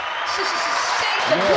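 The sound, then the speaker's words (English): A steady wash of crowd applause fills the brief moment, dense and fairly loud, with a few voices calling out or cheering underneath the clapping. “round of applause for the one and only Bobby Trans”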